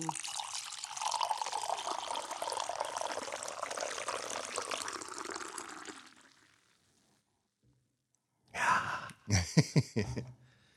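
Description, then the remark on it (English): Coffee is poured into a cup, starting low and going high, in a steady, hissing stream for about six seconds, then trails off; after a brief silence come a few short, breathy vocal sounds. “but I want to go ahead and do the coffee thing.”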